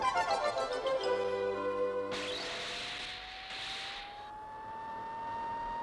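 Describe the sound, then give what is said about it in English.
A jet-powered flying car, the Jet Air Car, takes off from the ruined Fonte Abbey: a steady electronic hum gives way to a sudden loud rushing roar, then a high whine that slowly rises in pitch as the engine thrust holds. “Jet air car is now leaving the ruined abbey, having presumably found the clue.”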